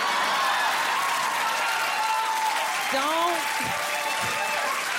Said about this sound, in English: See all them short men clapping? They amazing.